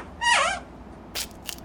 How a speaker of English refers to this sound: Unless, of course, she checks the door for fingerprints. Best give it a rub. Just in case.